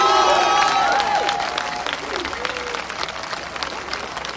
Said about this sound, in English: A look at the elders in the crowd. What about a big clap for the elders in the crowd today?